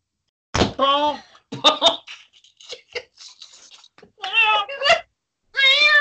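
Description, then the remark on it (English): A cat meows four times in loud, drawn-out cries, with a few soft knocks and clicks in the gaps between them. “Don't worry, I'll get the cat. The cat can come with us.”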